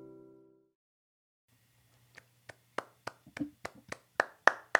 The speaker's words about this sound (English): Are we applauding ourselves? Yes, we are.